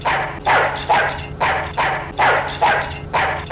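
A dog barks repeatedly and energetically, about seven sharp barks in a steady rhythm, loud, with no talking.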